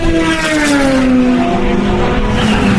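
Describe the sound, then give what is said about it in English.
An Audi race car roars past during the Le Mans race in 2014, its engine note sliding downward in pitch as it moves away, loud and steady over a wide wash of background noise, with no voices. “And that was the Audi.”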